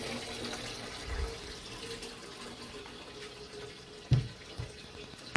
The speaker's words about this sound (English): I'm going to leave you with the sound of running water, because that's the path, isn't it?